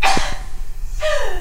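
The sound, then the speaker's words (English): A loud, breathy sneeze on the air: a sharp hiss of air at the start, a brief pause, then a second forceful burst that trails off with a falling, voiced tone. No talking. “You can sneeze on the air.”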